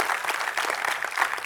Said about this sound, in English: I think we ought to just clap our hands to God. That's a good place right there to magnify the Lord.